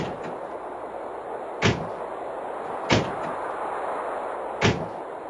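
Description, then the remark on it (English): A door slams three times at uneven intervals, each a sharp, loud impact that cuts through a steady background hiss. No one speaks. “We're watching the door go over and over again. Slam and slam.”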